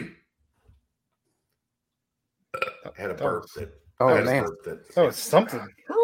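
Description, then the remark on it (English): After a few seconds of silence, a loud burp rumbles out amid bursts of voices and laughter-like talking. “I had a burp that came up out of nowhere.”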